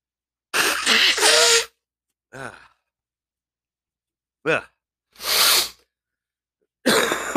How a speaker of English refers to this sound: Excuse me. Hold on. It's live radio. I got to blow my nose.